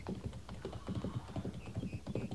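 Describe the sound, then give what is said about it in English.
Horse hooves clip-clop in a quick, steady rhythm, moderately loud, as a rider comes back on a trotting horse along a hard surface with no one speaking. “He just propelled himself up on that horse.”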